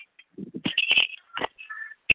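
A phone's ringtone chirps through a short burst of bright electronic tones and clicks on a group phone call where a participant is unmuted, moderately loud, with no one speaking over it.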